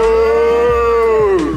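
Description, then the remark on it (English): People imitate a cow with a loud, drawn-out vocal moo that holds steady for over a second, then its pitch sags slightly at the end. “Anyway, everyone say moo, give us a big moo everyone.”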